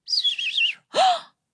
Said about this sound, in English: She heard a sound. And when she turned, she saw that bird and she thought, that bird is so beautiful.